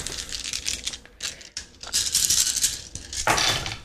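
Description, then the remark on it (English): Twenty-two dice rolled at once for damage in a tabletop role-playing game clatter and rattle continuously for several seconds, dense overlapping clicks of plastic on a hard surface, fairly loud, with no voices. “This is what 22 dice sound like.”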